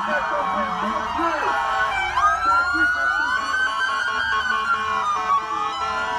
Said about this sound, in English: Now, the first responders in Newark, New Jersey, went outside Beth Israel Medical Center and blasting their sirens and cheered for health workers yesterday. This is what it sounds like.